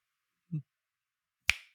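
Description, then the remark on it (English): A soft, low thump, then a single crisp finger snap, sharp and bright with a short ringing tail, set against silence. “Well, I can't just snap my fingers, unfortunately, and I don't think anybody can.”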